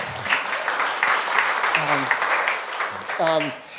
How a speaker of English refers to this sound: Can y'all clap for Public Church?